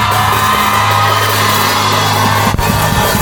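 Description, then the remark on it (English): An audience at a worship service cheers and shouts together in a sustained, loud roar of overlapping voices, answering the preacher's call for noise, with whoops and yells rising out of the dense wash of noise for several seconds. “Oh, can I hear some noise from some eagles in this house?”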